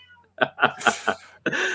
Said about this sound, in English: Oh, my mum's feeding the cats. They're all going mental.